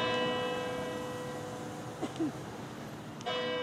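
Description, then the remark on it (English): Church bells in Longford town, County Longford, ring the quarter hour in a steady, resonant chime, tones lingering and overlapping before a fresh strike near the end, with no talking. They ring every quarter of an hour from 8 o'clock until 10 at night. “The whole of Longford lives by the bells every quarter of an hour, from 8 o'clock till 10 at night.”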